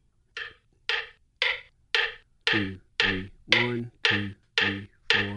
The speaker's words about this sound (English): It's about the size of, I would say, those listening at home can't see, a deck of cards. Yes, about the size of a deck of cards. And I'll turn it on. And so it has six different, it's chirping. That's the bird sound. It has six different sounds.